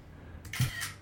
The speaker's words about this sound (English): You can hear my screenshots going off.